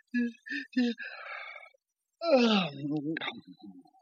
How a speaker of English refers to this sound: Oh, my. Now I'm going to have to yawn, too. Oh, excuse me.